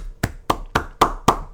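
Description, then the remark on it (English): Six sharp, loud hand claps in a steady, brisk rhythm, each one crisp with a quick decay, and no voices in between, clapping to congratulate a victory. “You're a loud clapper.”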